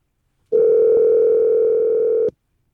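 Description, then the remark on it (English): A steady telephone dial tone of an outgoing call hums at a constant pitch for nearly two seconds, starting and stopping abruptly, with no voices over it. “Can we call? Go ahead.”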